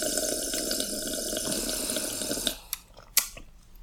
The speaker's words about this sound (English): I'm going to sip my juice.